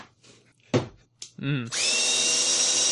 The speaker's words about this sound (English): It's got a hammer drill on it.